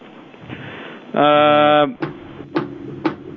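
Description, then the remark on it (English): Three firm knocks on a hotel room door, made from the hallway, land about half a second apart, fairly loud. A brief buzzy tone comes just before them, and faint murmuring voices run underneath. “Sorry, if you could stop open knocking on people's door.”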